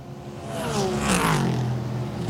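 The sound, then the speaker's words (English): A Porsche race car engine rumbles back down the pit lane at Road America, a steady throaty drone whose pitch sweeps downward midway as it eases off, with no voices. “The Porsche rumbles back down the pit lane, and now they're just waiting on the energy for the Acura.”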